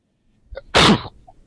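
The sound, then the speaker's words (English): A single loud sneeze from a man: a short inhaled build-up, then a sharp explosive burst that quickly fades, with no talking. “God bless you, man.”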